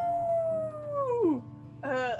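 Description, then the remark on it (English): A wolf gives a long, sliding howl that drops in pitch and fades, followed after a short pause by the start of another rising howl, clear. “And as everyone starts running, I'm gonna use my blunderbuss and I'm gonna fire at the wolves.”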